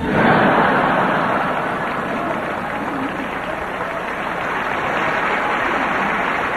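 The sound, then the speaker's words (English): Dense, steady applause from an audience that includes Zubin Mehta, many hands clapping at once in a continuous crackling wash that stays loud for several seconds with no voices standing out. “Zubin Mehta is clapping and laughing the hardest, folks.”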